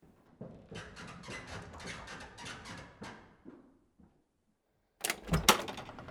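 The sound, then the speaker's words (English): A door is opened: a few seconds of rattling and scraping from the handle and latch, a short quiet pause, then a loud clattering thud as it swings open. “I must... get the door.”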